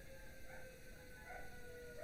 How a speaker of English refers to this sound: Do you hear that? What is it? You know, so it's 12 o'clock, so the 12 o'clock siren is going off. And the dogs think they're wolves when that happens. So they're literally howling.